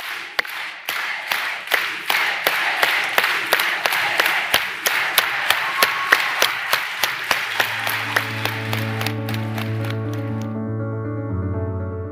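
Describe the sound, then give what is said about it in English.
An audience claps in unison for a unity clap at a live talk in San Francisco, California, the sharp beats starting slow and steadily accelerating until they blur into scattered applause, as sustained musical tones fade in toward the end. “So let's put our hands together and do a unity clap.”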